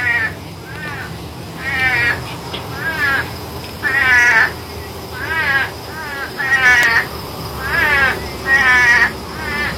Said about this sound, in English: But no, out in Arizona, there's the Sonoran Desert Frog. You ever heard of this one before? It actually makes a distinct sound. I wonder if you've ever heard it before. Here, take a listen to this.